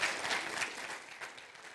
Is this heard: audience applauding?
yes